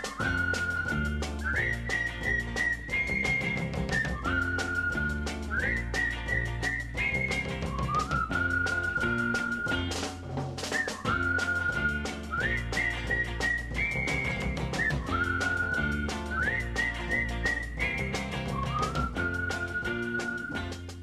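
A bright whistled melody from a 1963 pop song carries the tune over a full, steady pop band, the phrases repeating in a bouncy, regular pattern throughout with no voices.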